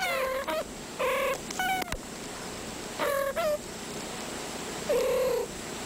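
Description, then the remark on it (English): A kitten mews in short, high-pitched cries, about six of them in small bunches, clear, over a faint low steady rumble like soft purring. “Is it a feline? It is a feline.”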